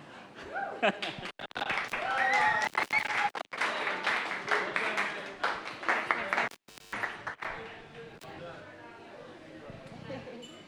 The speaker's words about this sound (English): All right, I think another round of applause, guys, please. Come on. Come on. That was amazing, all right?